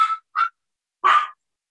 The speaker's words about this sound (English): Ignore the dog in the background, but also love the dog. It's so cute. He's just happy he's in his home.